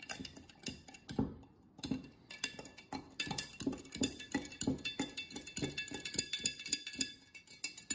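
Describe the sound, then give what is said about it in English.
A spoon stirs simple syrup made of 8 ounces of sugar and 8 ounces of hot water in a glass or cup, producing a steady run of quick, light clinks and taps, with no one speaking. “Just gonna give this a quick stir.”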